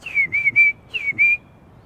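A bluebird sings two short phrases of clear, high warbling whistles, three quick notes then two, with a brief pause between and no voices.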